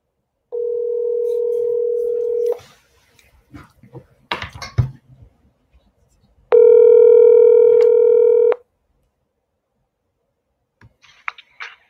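A steady telephone dial tone hums for about two seconds, followed by a flurry of clicks, then a second, louder and buzzier tone of similar length; no one speaks.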